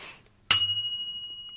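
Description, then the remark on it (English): A single bicycle bell ding, struck sharply and left to ring out with a steady, somewhat flat, dead tone that fades slowly. It's clear, with no talking over it. “Now, you're going to the bike shop to purchase a new bell.”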